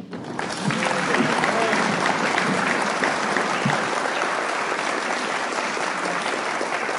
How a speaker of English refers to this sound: Wonderful applause. Love the enthusiasm.